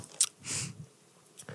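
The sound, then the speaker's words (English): Chewing on a soft, spicy snack from Thailand, with a few soft, muted bites and low mouth sounds rather than sharp crunches, heard alone with no talking. “Yeah, it wasn't very crunchy at all.”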